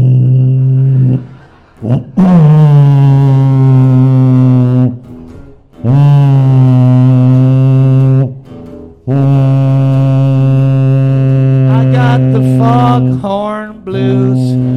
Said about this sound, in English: Foghorn blues. The foghorn blue. Dinosaur music.